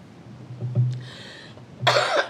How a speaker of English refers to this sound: Excuse me as I cough and compose myself.